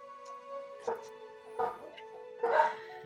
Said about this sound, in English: So we've got some barky dogs.